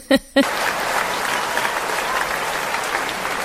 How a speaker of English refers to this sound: Dear producer, can I get a hand clap on that?